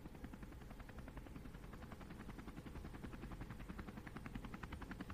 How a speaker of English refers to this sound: The four of them were quiet as Brad piloted the copter back toward the city.